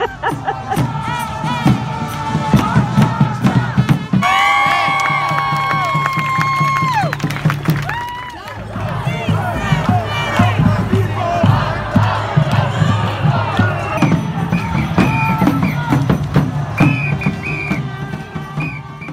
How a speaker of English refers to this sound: So, Vanita, that was the sound of uproarious joy of people breaking out in dance and song and their cars honking in Los Angeles.